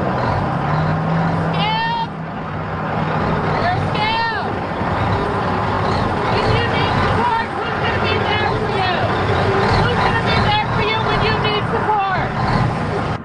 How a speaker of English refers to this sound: This is a semi trying to get through as the strikers continue their walk as they try and keep the truck from passing into the this plant, which is against the rules.